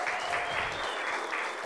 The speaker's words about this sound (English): Actually, please give me a round of applause. I just came in. The rush down here to do this show from Mexico, so give me a round of applause, y'all, please. Thank you.